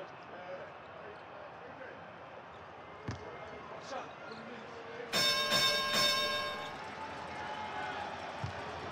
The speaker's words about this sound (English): That's a 30-point bell brought to you by Larry H. Miller Lexus.